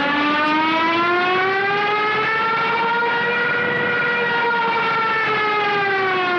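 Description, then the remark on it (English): A loud, sustained wailing siren of a World War II Stuka dive bomber (Jericho trumpet), with a rich stack of harmonics, its pitch rising slightly and holding steady before easing back, droning continuously for several seconds with no voices. “It is none other than the potent sound of the Blitzkrieg, and of course I'm referring Blitzkrieg, to the Blitzkrieg trumpet or the Stuka siren.”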